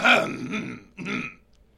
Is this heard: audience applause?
no